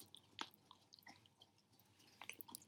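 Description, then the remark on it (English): Someone chews a brownie as an ASMR demonstration, with soft, moist smacking and a few sharper clicks at irregular moments, fairly quiet overall, with no talking. “I don't know if you can hear me eating the brownie, but I'm trying to eat this brownie.”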